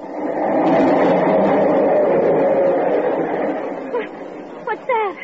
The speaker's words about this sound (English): The subway. It's right under it.